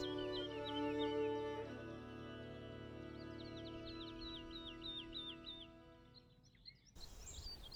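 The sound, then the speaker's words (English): Several birds chirp and twitter in quick repeated phrases outdoors in woodland with pine trees, holly and silver birches, fairly faint and layered over a steady low background hum, with no one speaking. “Quite a lot of birds about today.”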